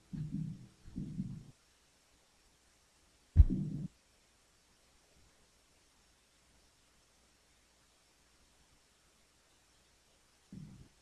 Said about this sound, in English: Now we start out with that heartbeat, and then it gets into the rhythm.